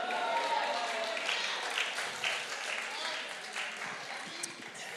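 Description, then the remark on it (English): An audience claps steadily in a dense, crackling wash of many hands, holding fairly even throughout and thinning slightly toward the end, with a faint murmur of voices beneath. “I'm losing my hand claps.”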